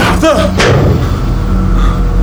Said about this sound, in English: That guy, the one beating on the door just now. For a second, he looked like a giant lizard.